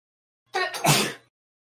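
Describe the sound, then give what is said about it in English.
A woman's single sharp sneeze, a quick breathy intake bursting into a loud, explosive 'achoo', clear with no talking around it. “I heard her sneeze. There's another one. And a third.”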